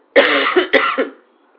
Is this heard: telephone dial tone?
no